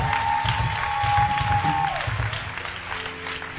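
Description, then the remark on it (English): An audience claps in a dense, sustained wash of applause to appreciate a pastor, steady and fairly loud throughout, with a faint sustained tone sounding underneath during the first half. “Your clapping is weak.”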